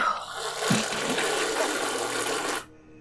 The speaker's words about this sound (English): Pour it down the drain? Oh, okay. Okay.